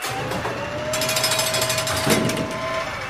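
A spaceship's POC bay door grinds open under manual override with a loud, steady mechanical rattle of rapid pulses over a thin sustained whine, no voices, lasting about three seconds.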